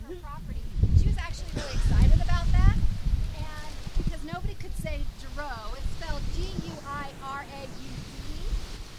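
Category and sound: nature, strong wind outdoors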